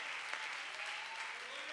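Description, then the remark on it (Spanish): An audience applauds in praise of Jesus Christ, a dense wash of clapping hands at an even, sustained level with no pauses, heard on its own without talking over it. “Denle un fuerte aplauso a este camino maravilloso, hermanos y hermanas, que hemos encontrado.”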